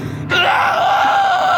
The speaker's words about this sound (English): Screamed the Polish coachman as the driver cackled uninterrupted. The Polish man struggled beneath him as his eyes burst and white goo ran down his cheeks.